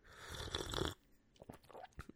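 A loud, airy slurp of hot Yorkshire tea from a cup in a flat in London lasting about a second, followed by quieter swallowing and a few small mouth clicks and smacks, with no talking.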